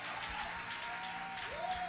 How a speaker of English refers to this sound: Somebody clap your hands right now and give Jesus some glory here.